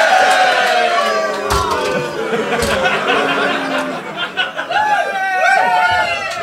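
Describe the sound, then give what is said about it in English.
A lively audience cheers and whoops continuously as a man closes a door, with excited overlapping voices, laughter and a couple of sharp knocks or thuds early on, sustained and fairly loud throughout. “Are you going to cheer him closing it? Close it! Close the door!”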